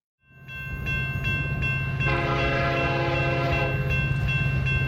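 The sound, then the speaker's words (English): A train rumbles steadily with rhythmic clicking, then a loud, sustained whistle blast sounds over the rolling noise for a couple of seconds before fading back into the clatter. “Let's get right into the choo-choo train in our NFL picks for Week 17.”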